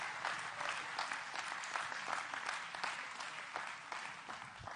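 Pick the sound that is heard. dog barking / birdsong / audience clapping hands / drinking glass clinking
audience clapping hands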